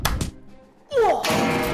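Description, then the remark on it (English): A cartoonish slapping sound effect of a kid slapping everybody: a couple of quick smacks, a brief pause, then a sharp whipping swish that breaks into a loud, noisy burst. No one speaks. “One kid got so excited, he started slapping everybody.”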